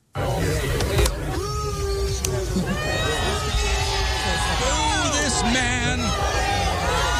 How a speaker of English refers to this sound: And I'll play a little audio from it. The booing you hear is from people who are mad at the egg thrower.